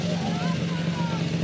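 An old motorbike engine drones steadily, its pitch sliding up and then easing off as it rides by, with a constant low hum beneath and noisy background throughout.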